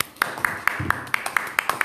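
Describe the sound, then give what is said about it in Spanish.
Applause welcoming a guest speaker, made of sharp, steady claps, roughly nine of them at an even, quick rhythm, each bright and snappy against a faint background hum. “Así que démosle un fuerte aplauso”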